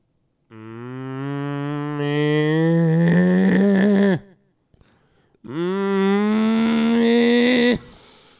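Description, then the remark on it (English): A cow moos twice, loud: two long, drawn-out bellows, each rising in pitch and growing harsher before cutting off, with a brief pause between them. “That's an angry cow.”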